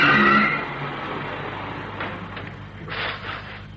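A train pulls into Biggleswick station on market day: a loud rumbling roar with a high brake squeal at first, easing into a steady mechanical rumble with brief hissing bursts, no voices.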